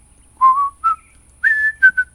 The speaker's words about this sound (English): We're laying in the living room with the television set tuned in to Andy Griffith. I could hear the whistling.